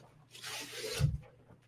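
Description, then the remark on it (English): A dry rustling scrape of thick paper lasting under a second, ending in a soft, low thump, as if a sheet were handled and set down. No voices. “Man, you like you do like this thick paper. It's almost like leather armor.”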